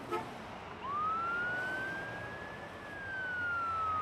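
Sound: emergency vehicle sirens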